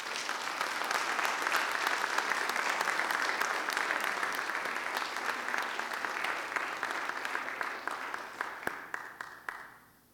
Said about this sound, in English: Would you guys give the guys another round of applause?